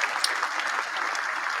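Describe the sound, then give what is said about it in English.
A steady burst of applause from a crowd, many hands clapping in a dense, continuous wash that stays at an even loudness throughout, with no voices standing out. “Basically, you know, let me find my round of applause for the guys doing y'all thing.”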